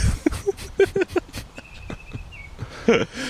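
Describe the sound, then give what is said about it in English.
Outdoors by a river, a bird gives a thin, high whistled note lasting about a second, faint behind muffled voices and a few soft knocks. “Yo, listen to that bird.”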